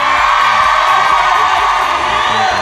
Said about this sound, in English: How are we doing? Everyone's clapping.